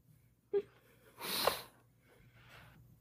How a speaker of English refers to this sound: Sorry, did I just cough on there? I apologize.